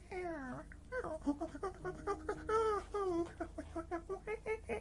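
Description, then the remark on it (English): A dog named Vinny makes a string of high, wavering yips and squeaky whines that sound almost monkey-like, continuous, with pitch sliding up and down in quick bursts. “You little monkey. You sound like a monkey.”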